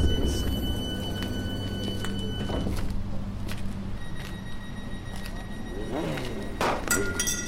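A Citroen C4 Cactus car idles in car park E with a steady low hum and faint high whine, broken by a few soft thuds and clicks and a brief whirring rise near the end.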